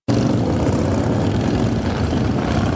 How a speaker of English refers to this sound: Members of the motorcycle club, Keepers of the Fallen, strapped on their helmets and revved up their engines in honor of Cedric Gregg and Sarah Weaver.